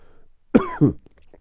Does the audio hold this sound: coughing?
yes